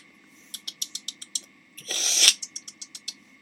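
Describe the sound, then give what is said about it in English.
A rotary phone dial clicks off a quick, even run of about seven sharp ticks, gives a brief rising whir, then clicks through another series of evenly spaced ticks. No one speaks. “In the old days, it was a dialing phone.”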